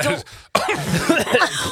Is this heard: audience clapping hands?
no